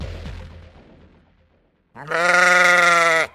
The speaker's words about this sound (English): I barely had time to catch my breath before I was startled by the baa of a sheep. I looked around and found myself surrounded by sheep. I was on a sheep farm.